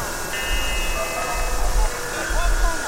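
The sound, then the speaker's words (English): A washing machine on its spin cycle, a steady whirring drone with a deep rumble underneath and a thin, rising whine on top, continuous and pulsing slightly in loudness. “It's the washing machine's going through its spin cycle.”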